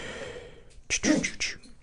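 A single sharp sneeze bursts out after a brief quiet stretch, with a quick inhale leading into a loud, hissy expulsion that fades within half a second.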